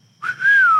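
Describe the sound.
A person whistles a short phrase imitating a spaghetti western theme like that of The Good, the Bad and the Ugly: one clear, loud note that swells, rises slightly, then glides downward, with no talking over it.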